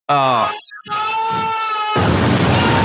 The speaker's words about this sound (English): Not the guy screaming, for fuck's sake. You've been warned about that. Oh, sorry. Yeah. I pressed the wrong button.